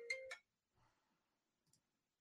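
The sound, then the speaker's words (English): Two quick electronic tones from a phone alarm chime in close succession, bright and fairly loud, followed by a few faint rustles and a soft click. “Thinking my phone's ringing, but that's your alarm.”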